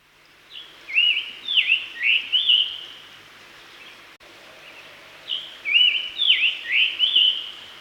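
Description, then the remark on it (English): A scarlet tanager sings two short phrases, each a quick run of four or five hoarse, burry notes, separated by a pause. The song is clear against a quiet background. “For those interested in hearing what those bird songs sound like, here's first the scarlet tanager, then the rose-breasted grosbeak, and then lastly the red-eyed vireo.”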